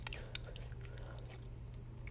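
Quiet chewing of cold cooked food with soft wet clicks and smacks repeating steadily over a low hum, with faint breathing through the nose in between bites.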